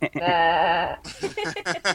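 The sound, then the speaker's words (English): A person does a wavering goat bleat impression, a single sustained quavering 'baa' lasting about a second, followed immediately by brisk talking. “Goats more sort of bleat.”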